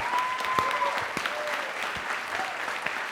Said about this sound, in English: I thank our panel. A round of applause to our panel this evening.